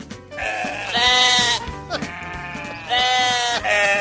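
A lamb bleats loudly in two long, wavering calls, each a quavering, nasal cry with rich overtones, separated by a short pause with softer sounds in between.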